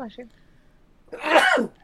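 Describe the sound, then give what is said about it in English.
A single loud sneeze, caused by allergies, bursts out after a brief murmur of voice, a sharp noisy blast with a voiced edge that lasts about half a second. “Bless you. Stop that.”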